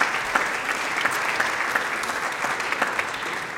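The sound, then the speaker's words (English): Steady applause from an audience for a woman who has just spoken, a dense wash of many hands clapping at a consistently loud level with scattered sharper claps standing out, and no voices. “And thanks, let's give her a round of applause.”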